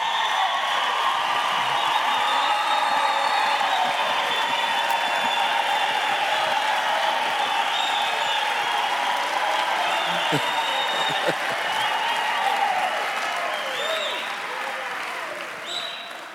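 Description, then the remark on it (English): A crowd gives an Afrocentric, Pan-African cultural show of appreciation for leaders, applauding steadily for about sixteen seconds, with high-pitched ululating and shrill whistles running through the dense, loud clapping before it eases slightly at the end. “acknowledge, and appreciate these decisive leaders by giving them an Afrocentric, a Pan-African, cultural, ululating, whistling, and dancing as we appreciate.”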